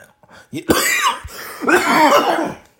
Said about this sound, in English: See the cough? See the cough right there? Oh, oh boy, it's coming, it's coming. Oh, oh boy, it's coming hard right now. See, the coughing is only coming up when I'm trying to talk.